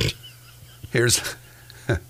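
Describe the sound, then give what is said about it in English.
A pig that was running loose on the interstate in Farragut, Tennessee, oinks and squeals in a few short, loud bursts, with brief pauses between them over a low steady hum. “Here's a pig that was running loose on the interstate in Farragut, Tennessee.”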